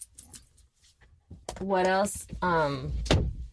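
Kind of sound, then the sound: household object, door being shut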